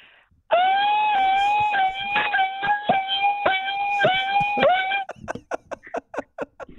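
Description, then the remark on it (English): A voice imitates a car alarm: a loud, steady high-pitched wail held for about four seconds, then a quick series of short, sharp chirping bursts. “You ready to do your car alarm noise?”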